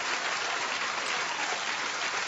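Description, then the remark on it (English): A crowd applauds steadily as a woman flashes her big diamond ring at the camera, a dense wash of many hands clapping at an even, sustained loudness throughout, with no voices standing out. “Okay, she flashed her ring at the camera, and that's what's getting her big diamond ring, which is getting the applause.”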